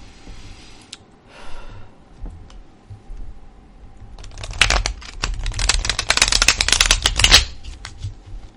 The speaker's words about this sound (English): I was thinking about the card shuffling.